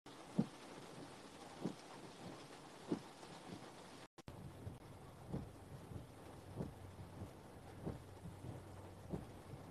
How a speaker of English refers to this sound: It's raining like shit, y'all.